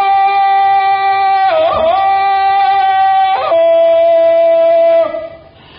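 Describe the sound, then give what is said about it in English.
A man standing on top of a great rock lets out a loud, long jungle call, a sustained wavering cry that yodels through sharp pitch breaks before dropping lower and cutting off after about five seconds, heard alone. “Now he climbed to the top of a great rock and gave the cry that was known to every denizen of the jungle.”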